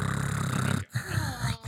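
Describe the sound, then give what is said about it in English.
A voice imitates the wheezy, congested purr of a pet cat named Edward that had a respiratory infection: a steady, low, raspy rumble with a rattling texture, broken twice by short pauses for breath. “So whenever he purred, he would just like...”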